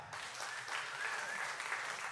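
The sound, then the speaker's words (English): A crowd breaks into steady applause, many hands clapping together in a dense, continuous patter that holds level for a couple of seconds. “No, you can clap for that.”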